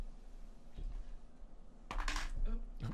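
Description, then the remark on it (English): Dice clatter into a dice box, a few sharp rattling clicks followed by a louder burst of tumbling and a final skittering settle, over a quiet background hum. “It rolled into my dice my dice box.”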